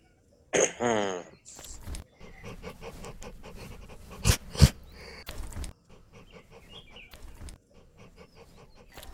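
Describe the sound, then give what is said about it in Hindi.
A foreign-looking dog eagerly quenches its thirst, lapping up water in quick, steady, wet slurps after a brief whine-like vocal burst at the start; panting breaths mix in and nobody speaks. “अच्छा बापू, ये कुत्ता तो बिलायती मालूम होता है। अरे देखो कैसे चाव से अपनी प्यास बुझा रहा है।”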